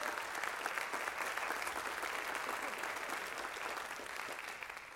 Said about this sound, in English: Could you give Him an appreciation clap for that?